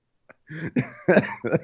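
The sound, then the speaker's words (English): A fairly loud run of about four throaty coughs in quick succession, each a short rough burst with brief pauses between, no talking around them. “Sorry, that just made me cough.”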